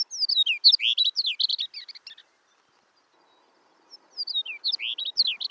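A Chestnut-collared Longspur sings two bright, tumbling phrases of sweet, warbled notes, separated by a brief pause, clear against a quiet background.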